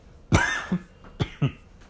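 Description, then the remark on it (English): A fairly loud fit of coughing: a hard, harsh cough, a smaller follow-up, then two more sharp coughs in quick succession, with no talking. “I wish there was a cough button on this thing.”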